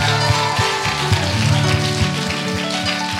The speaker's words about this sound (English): Give God a good praise clap. Come on, clap like you won the game.